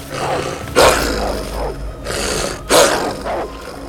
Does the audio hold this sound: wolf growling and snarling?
yes